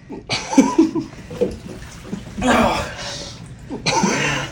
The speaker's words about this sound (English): We're gonna overflow the damn tub. You're fine if it overflows.